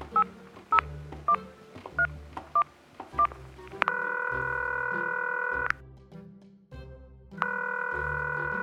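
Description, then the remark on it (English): A quick run of about eight electronic keypad beeps from a phone being dialed, followed by long, steady ringing tones on the line, sounding slightly tinny as if over a speakerphone. “Come on, let's go dial this phone. Let's put this baby on the speakerphone so I can do a little coaching.”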